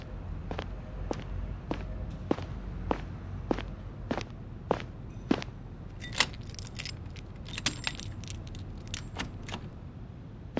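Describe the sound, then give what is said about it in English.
Steady footsteps tap along for several seconds, then a bright metallic jangle of keys takes over in quick clustered bursts, as if fumbling with a lock, over a low rumbling background. “I didn't know I left the door unlocked. Let me lock it real quick.”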